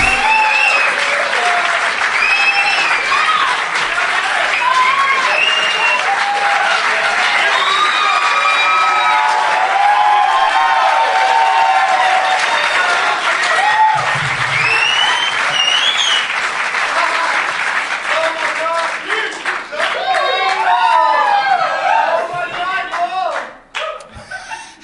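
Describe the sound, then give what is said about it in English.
A lively crowd at a live Doug Loves Movies show in the Tom Lee Music Hall, Vancouver, BC, Canada, during the Vancouver Comedy Festival, applauds and cheers steadily, with whoops and shouted voices rising over the clapping for about twenty seconds before the noise begins to taper off. “Everybody. Fired up crowd.”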